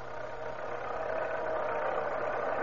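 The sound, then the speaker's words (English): A car engine hums steadily from inside the vehicle as a road foreman drives to a camp and up a little road into Latigo Canyon: a continuous mid-range drone with a low rumble underneath, no voices, holding an even level throughout. “So, with Deputies Nestor and Chapman following in their car, the breathless road foreman drives to the camp.”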